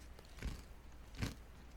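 Crunchy chewing of regular pretzel chips, with three distinct crisp bites spaced unevenly over a quiet background; no talking.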